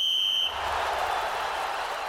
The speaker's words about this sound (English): Righto, that's the half-time whistle.